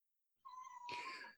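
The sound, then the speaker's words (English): A single drawn-out meow from the speaker's little pet cat, fairly clear, starting as a steady tone and opening into a louder, brighter cry before trailing off. No one speaks. “Hey, Kimchi, my little cat is right here.”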